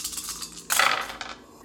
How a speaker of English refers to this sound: Oh, I rolled a 1 on my wild die, and I rolled 2 dice.